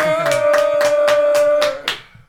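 A short burst of applause: about seven evenly spaced claps in a steady rhythm over a sustained tone, fairly loud, ending abruptly. No one speaks.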